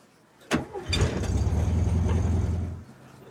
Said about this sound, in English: This Airbnb is on a busy street. The street is wet from rain. Every time a car drives by, it says this.